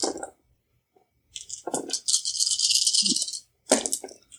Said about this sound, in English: So go ahead and roll 8 dice.